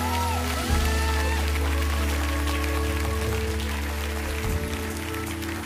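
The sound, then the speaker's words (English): A church audience gives a clap offering to the Lord. Their clapping and applause form a dense, steady wash of hands that lasts the whole stretch, loud, with sustained keyboard-like tones humming underneath. “Give our Lord and Savior a great big clap offering.”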